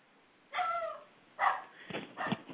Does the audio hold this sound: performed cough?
no